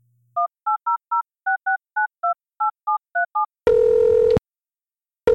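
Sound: telephone keypad dialing tones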